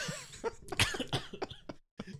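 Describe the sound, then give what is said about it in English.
A harsh fit of coughing: a string of rough, rapid bursts that tumble together, stop briefly, then one more cough follows. “That's why you deserve that cough.”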